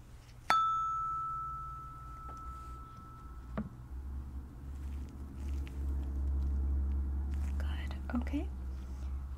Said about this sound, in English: Okay, last but not least, with the hearing, I just have my tuning fork here. I'm gonna put this near your head. Just let me know, again, with your eyes closed, when you don't hear the humming anymore, okay?